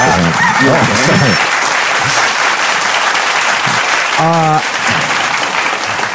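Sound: clapping applause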